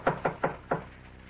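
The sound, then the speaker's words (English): Four firm knocks rap on a door in quick succession, the last one after a slightly longer pause, clear with no voices over them. “While I answer the door.”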